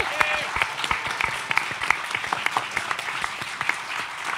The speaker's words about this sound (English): So everyone who has been at the venues, please give them a big round of applause.